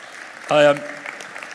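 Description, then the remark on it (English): A crowd claps in a steady, noisy patter for a second or so, with one loud, sustained cheer or whoop rising above the applause early on: a round of applause for the tech team. “But can we give a round of applause to our tech team?”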